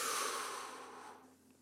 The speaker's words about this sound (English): So let's inhale completely. Let's breathe in. One, two, three, breathe in.